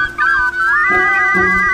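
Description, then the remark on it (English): Three baby birds whose nest is broken chirp in high, sustained whistling tones, with new peeping voices joining one after another until they overlap steadily, loud and with no talking. “It's three baby birds, and their nest is broken.”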